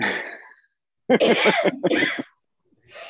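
A loud sneeze bursts out after a breathy intake, followed by a second sharp burst and a faint breath at the end, with no one talking.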